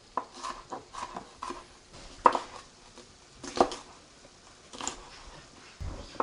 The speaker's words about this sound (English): All right, back to the green pepper. Let's finish chopping that up.